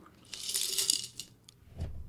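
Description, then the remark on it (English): A quarter coin drops and clinks, a bright ringing jingle with a few quick bounces before settling, clear with no talking. “Quarter, please. A quarter.”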